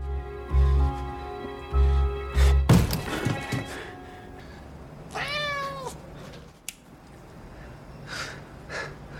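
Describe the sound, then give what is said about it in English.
A cat meows once, a drawn-out wavering cry, after a series of heavy thumps and a clattering knock as something bumps around. “when this cat, Bob, finds his way into the place that he has now been given to stay”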